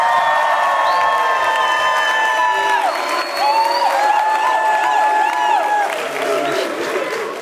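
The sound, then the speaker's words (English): A lively live studio audience at a radio broadcast on the campus of Texas A&M Commerce in Texas cheers and applauds, with high whoops and shouts rising over dense, steady clapping that stays loud throughout. “Wow, what a great lively crowd.”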